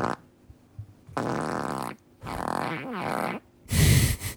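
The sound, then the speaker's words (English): A sequence of fart sounds: a short one, then two longer, sputtering blasts with a wobbling pitch, ending in a loud, raspy burst. Fairly loud, with no talking. “Fart number one.”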